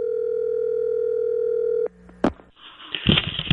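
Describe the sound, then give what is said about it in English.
A steady, humming telephone dial tone holds for nearly two seconds, then cuts off with a click and a short burst, followed by scratchy line noise as a call to golfer Tiger Woods connects. “Big story, so let's give Tiger a call and see if he'll talk to us.”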